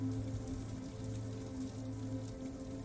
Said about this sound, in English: Rain cascades down the multi-paned windows, trickling around the intricate metal grids around each pane of glass.